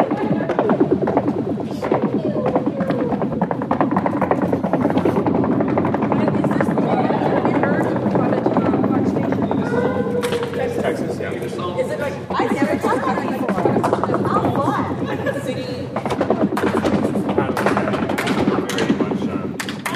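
A large stadium crowd does the "dome stomp" in a stadium seating just under 50,000, stomping their feet in unison: a constant rumbling roar of rapid, heavy thuds mixed with loud cheering and chatter that holds steady for the whole stretch.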